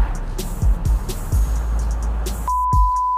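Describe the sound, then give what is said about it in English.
Steady, loud road roar fills a car cabin at highway speed while an Echo Auto device is tested against the noise, with a heavy low rumble and occasional thumps, then a single sustained electronic beep near the end. “All right, so we took this thing on the highway to see how the Echo Auto deals with all of the noise when it's maxed out.”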